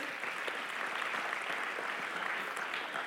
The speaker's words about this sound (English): There's a lot of clapping going on this morning. That's good. That's good things to clap for. It's a celebration morning.